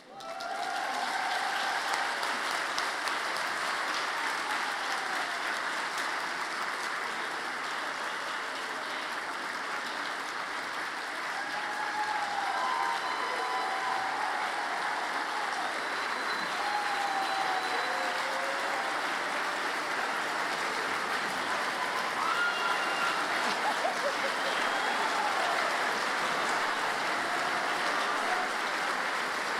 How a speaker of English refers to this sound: So now is the time for you to return to your classroom, but we'd like you to walk out through this aisle, if you could, and our grown-up students would like to give you a round of applause. One more time for being kindergartners.